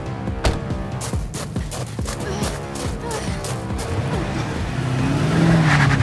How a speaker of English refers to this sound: in an old Chevy pickup truck, drives from around the house and a revolver in hand.